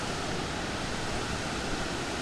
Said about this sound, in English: I was convinced that was an aeroplane flying over the top of me. So we're not going to go any nearer than here. I imagine there's a way down there, but it's quite a way down. What a spectacular waterfall. Never even knew it was here.